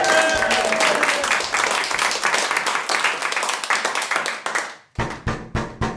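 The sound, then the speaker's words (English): A loud, dense round of applause with many hands clapping, a faint whistle at the start, then the clapping thins and ends in a few separate, spaced claps. “let's give her a big round of applause for trying.”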